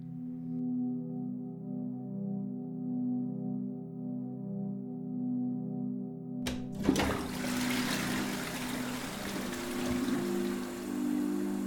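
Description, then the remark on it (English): A steady low mechanical hum runs alone for several seconds, then a toilet flush bursts in with a sudden loud rush of water that keeps churning over the hum to the end. “If you live in Melbourne, chances are you don't give too much thought to where what you flush down the toilet goes to.”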